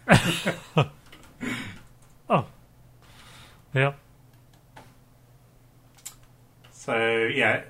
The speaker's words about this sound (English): Oh, I'm sorry. You can't hear me because I'm just typing like this.